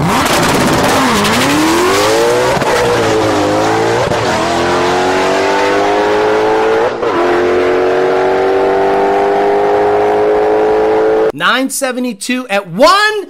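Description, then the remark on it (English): A powerful supercharged drag car on bias ply tires, with a booster pump, MS-109 and Lund tuning, making about 800 rear-wheel horsepower on the dyno, roars hard off the line, its engine note climbing through several quick gear shifts, loud, before a voice starts talking at the end. “This car had a booster pump, MS-109, Lund tuning, and it made 800 or so rear wheel horsepower on the dyno.”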